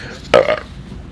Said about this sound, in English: No, it's not. That was just a burp.